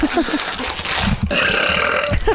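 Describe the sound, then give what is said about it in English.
A loud, drawn-out burp rumbles, followed by a second rough, gurgling belch, with no talking during the sounds. “These make me so gassy.”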